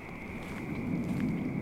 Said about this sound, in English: That really is just like swamp creatures making noise.